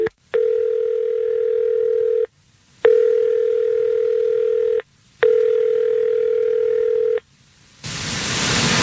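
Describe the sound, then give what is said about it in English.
Three long, steady telephone tones, each lasting about two seconds and separated by short pauses, come through a phone line as the Fred Show morning radio show places a call, ending in a sudden burst of hissing static. No one speaks. “Well, let's see if we can get Teresa on the phone right now.”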